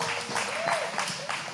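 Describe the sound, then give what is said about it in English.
A church audience claps steadily for a moment for a $100,000 gift being sent in the mail, a dense, continuous patter of many hands with a faint murmur of voices mixed in underneath. “You can clap. It's a good thing to clap for.”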